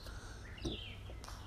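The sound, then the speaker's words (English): Faint bird chirps and short song phrases over a soft outdoor background hiss, heard from a front porch in the morning, with no one talking. “you can hear the birds singing, the wind chimes”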